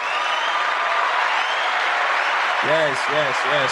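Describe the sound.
Steady, dense applause fills the whole stretch at an even loudness, with a few rising whoops or cheering voices breaking through near the end.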